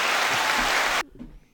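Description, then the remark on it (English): A burst of clapping and applause, a dense, loud wash of hand claps for about a second that cuts off abruptly, leaving faint low murmurs afterward. “Now we're counting applause.”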